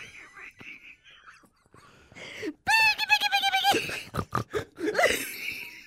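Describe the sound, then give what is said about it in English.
A person in a hog-calling competition imitates a horse whinny: a loud, wavering, high-pitched call that trembles for about a second, then breaks into short choppy bursts, preceded by soft breathy noises. “Oh, no, that's a horse. It's a donkey.”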